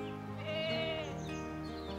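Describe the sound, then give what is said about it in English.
A goat lets out one long, wavering bleat, loud, quivering as it holds for about two seconds with no other sounds around it. “Lightfoot and Blackie were two goats, and they lived with several others on the rocky hillside at the edge of a big city.”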